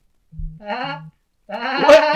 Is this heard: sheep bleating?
yes